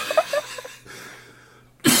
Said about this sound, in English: Sorry, I'm coughing so much. We're going to have some fun editing this. It's all right. I'm just coming over a cold.